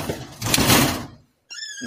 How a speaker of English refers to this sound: No, I shut the door.